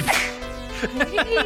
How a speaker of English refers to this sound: Suddenly he has a whip. Cracks it, it's gone.